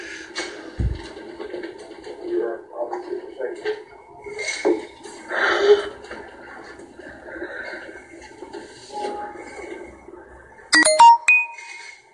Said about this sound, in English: They show the raw footage and it's still how does, you know, the blinds go up and down and make noises like that. The wind doing some very bizarre things with the blinds.